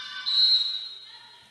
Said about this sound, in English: And we have a whistle and a foul call.